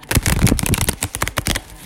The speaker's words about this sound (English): Try not to shuffle these cards in y'all ear like that. I'm sorry.